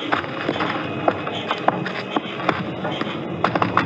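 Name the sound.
knocking on a door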